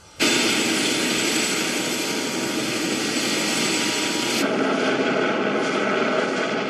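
A helicopter's engine and rotors roar loudly and steadily, a dense continuous whine and rumble that starts abruptly and holds for several seconds with no voices.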